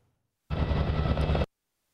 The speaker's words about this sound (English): These Sikorsky Firehawk helicopters have been described as a game changer. Their job is to attack wildfires and rescue people in harm's way.